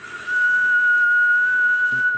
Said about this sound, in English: went straight over to the stove and pulled off the kettle that was whistling quietly in the corner.